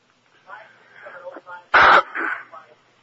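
man clearing his throat

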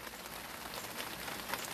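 rain falling outdoors

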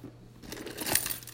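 keys jingling

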